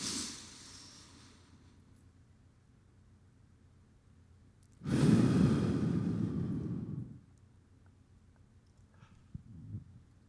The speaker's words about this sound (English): box breathing, where you inhale, take a deep breath through your nose